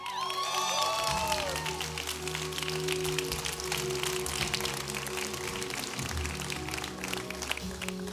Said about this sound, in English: And it is, yeah, you can clap again. That's fine with me.